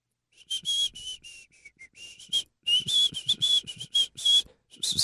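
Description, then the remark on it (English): A person whistles in a string of short, breathy bursts, the thin tone wavering and mixed with lots of rushing air, with brief pauses between attempts. “Hold on, let's do our best whistle.”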